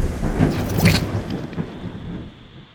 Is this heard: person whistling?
no